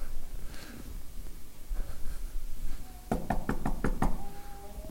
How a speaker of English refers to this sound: Got a lot of police showed at my house. Knock on that door. And they just knocked on that door.